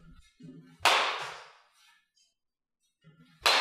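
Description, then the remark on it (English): Two sharp, loud cracks of a Marucci Cat Composite Pastime baseball bat hitting a ball, the first ringing out and fading over about a second, the second cut off at the end, with faint murmuring voices in between. “That's a good bat, bro.”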